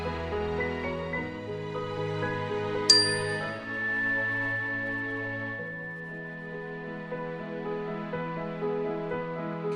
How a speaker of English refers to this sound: We'll begin the meditation with a ring of the chime and end the meditation with a ring of the chime.